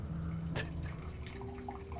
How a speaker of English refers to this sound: You want me to pour it? Actually, I would love you to pour the water.